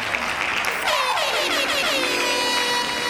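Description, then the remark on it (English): A loud, blaring air horn sound effect sounds over a hissy, crowd-like wash, its tone sliding downward before holding steady for a couple of seconds. “Air horn.”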